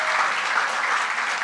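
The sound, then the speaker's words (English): A crowd at a church service claps steadily for everyone serving that morning, a dense wash of many hands at a constant loudness, with no voices breaking through. “So let's give a round of applause to everyone that is serving this morning.”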